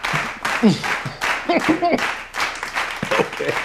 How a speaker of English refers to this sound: You do deserve the chanting clap.